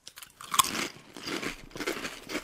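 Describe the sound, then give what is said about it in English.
Crisp crunching of a sour cream flavored potato chip being bitten and chewed, with a sharp initial snap followed by repeated dry, crackly chews over a couple of seconds, no talking. “Crunchy. That is crunchy. Definitely sour cream flavor.”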